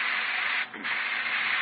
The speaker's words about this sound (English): Well, perhaps my eyes deceive me, but it looks like you're painting. Oh, no. No, just spraying the paint on my fence.